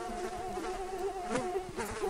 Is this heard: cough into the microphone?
no